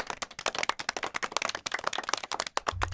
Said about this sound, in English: So, round of applause for Ellis and his performance.